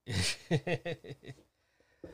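A long, breathy yawn that opens with a loud airy inhale and trails into a few drawn-out voiced groans, fading to quiet near the end with a faint breath.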